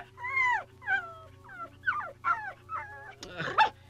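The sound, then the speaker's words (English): A small dog named Pom-Pom lets out a string of short, high, whiny yips about every half second, ending in a rougher, louder bark, over a faint steady hum. “No, do stop barking, Pom-Pom.”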